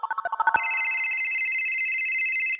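A phone call is placed to a basketball beat writer in Las Vegas: a quick run of eight dialing beeps gives way to a loud, steady electronic ringing tone that holds for about two seconds, clear with no voices.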